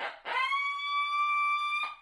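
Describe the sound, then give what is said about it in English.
A coyote howl blown on a handheld howler call by a turkey hunter trying to make turkeys gobble: a breathy rush of air, then one long, steady, reedy tone held for over a second before a short puff. Loud, no talking. “If you've seen a bird and you see him go to roost and you're not but a couple hundred yards away, 200-300 yards away, that coyote howler doesn't come out.”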